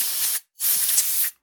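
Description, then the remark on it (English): Two short blasts of compressed air spray used to clean out a phone, each a bright, loud hiss lasting under half a second, separated by a brief silence, with a third burst just starting at the end. “You cleaning out your phone with that press there?”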